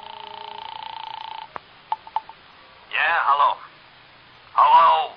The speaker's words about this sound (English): So I found a phone and called Villa 3 at the Wilshire Gardens.